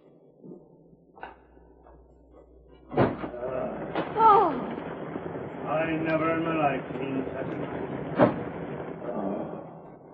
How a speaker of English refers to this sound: Night has fallen, and outside a heavy rain is beating down. Suddenly, footsteps are heard on the porch.